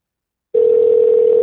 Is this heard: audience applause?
no